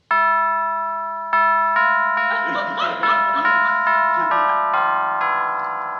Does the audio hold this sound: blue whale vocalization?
no